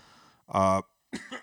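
A single loud cough bursts out abruptly, then a second rougher cough or throat-clearing sound follows after a brief pause.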